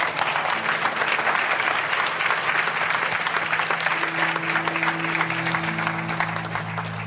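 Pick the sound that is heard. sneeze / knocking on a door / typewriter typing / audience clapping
audience clapping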